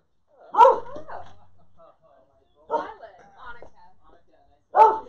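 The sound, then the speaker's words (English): A dog barks three times, each loud bark spaced about two seconds apart, with quieter yips and whines trailing between them, one of three dogs present. “No, but there's a third dog here, so I'm just paranoid.”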